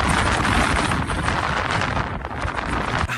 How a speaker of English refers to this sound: That was not quite what we were expecting. It was nearly white out the whole way up, gusting winds of up to 70 k's an hour. And, for most of the walk, there we were kind of leaning in to the wind, trying to make our way up step by step.